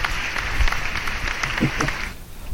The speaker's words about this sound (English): I'm going to give him a soundboard applause. Where is it? There it is. Woo!